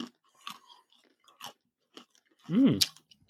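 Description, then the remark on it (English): Crunchy chewing on seasoned nuts: a string of sharp, brittle crunches at an irregular pace, then a louder, fuller burst of munching near the end. No one speaks. “They're very seasoned, these nuts. All right. I'm throwing them down.”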